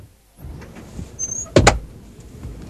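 An airliner cabin door swings shut during pre-flight checks with 48 passengers aboard, a sharp, heavy double thud preceded by a brief mechanical squeak, all over a low steady cabin rumble. No voices.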